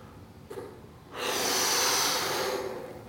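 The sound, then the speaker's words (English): A person blows a long, steady breath into a balloon: a loud, breathy rush of air that starts after a quiet moment and holds for about two seconds, with no talking. “So let's blow up our balloon.”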